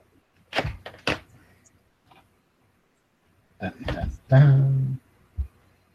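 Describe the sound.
A voice imitates the creaking of a stone mechanism: a few rough scraping bursts, then a drawn-out groaning creak and a short final knock, fairly loud.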